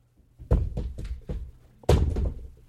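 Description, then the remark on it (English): A water bottle drops and clatters: a loud hollow thunk, a few quicker bouncing knocks, then a second heavy thud that rattles briefly before fading. No one speaks. “No, you're dropping a water bottle.”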